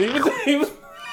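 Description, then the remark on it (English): A voice imitates a duck with two nasal, honking quacks in quick succession, fairly loud, trailing off into quiet. “he was playing the duck.”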